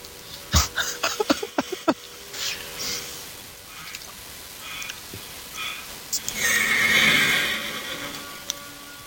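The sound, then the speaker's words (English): A horse lets out a loud whinny with a rapid shuddering quality, followed by scattered hoof thuds and a rougher, breathy stretch of movement and snorting near the end. “The horse that longs to be free and can't be tamed.”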